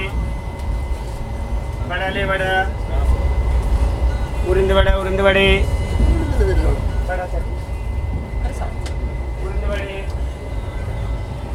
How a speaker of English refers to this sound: We are now on a train. This train goes from Irkalapmukudum, also known as Kochi, to Varkala.